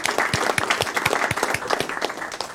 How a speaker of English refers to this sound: My dog liked that clapping.